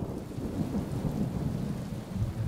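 A steady thunderstorm: deep, continuous rumbling thunder rolls beneath a constant hiss of rain, fairly loud and unbroken throughout, with no voices.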